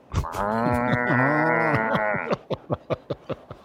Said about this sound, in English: And then what we discovered 2 mornings ago was the neighbor has a cow that you can hear from miles.